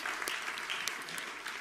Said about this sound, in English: Somebody give the Lord another hand clap.